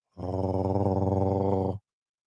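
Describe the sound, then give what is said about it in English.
A single low, rumbling growl with a fluttering, purr-like texture holds steady for under two seconds, loud, then cuts off abruptly into silence. “You think that's a purr?”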